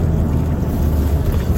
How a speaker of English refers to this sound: On the way home now, my pickup, and I was listening to Fox News,